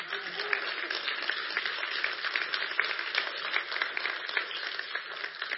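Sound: applause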